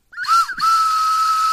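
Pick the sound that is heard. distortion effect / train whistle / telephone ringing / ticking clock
train whistle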